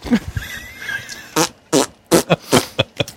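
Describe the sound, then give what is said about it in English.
A chaotic burst of fart noises, six or seven loud, sputtering blasts tumbling over one another in quick, irregular succession after a quieter, murky opening, with no talking. “It's a cacophony of fart noises.”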